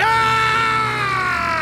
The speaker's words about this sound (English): His eyes met mine just as the gnashing mouth spat out the tattered gag, spraying blood all over ragged lips in a barbaric scream.